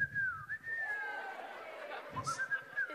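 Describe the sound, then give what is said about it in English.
A person whistles a bird-like call like the one from the film Bird Box, a sustained, wavering tone that dips briefly and resumes, imitating a bird, with faint murmuring voices and rustling underneath. “That's that call from Bird Box”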